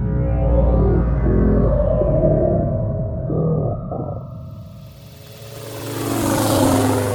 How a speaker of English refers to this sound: Whatever that plane is, it's heading right for us. It can't be NYPD.